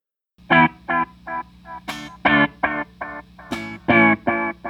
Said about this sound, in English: So here's the echo, the Sir Discovery delay.